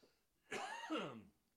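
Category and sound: human body sound, cough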